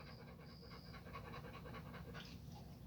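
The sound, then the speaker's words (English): A small female dog pants rapidly and steadily, a continuous rhythmic huffing with no one speaking over it. “You a pretty little dog.”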